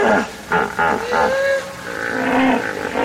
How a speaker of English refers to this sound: I've found that hippos often will herd in a pool, and then there'll be another pool down the river, maybe 2 or 3 kilometers down. And there seems to be an important communication between these groups. Hippos will chorus these bellows and other sounds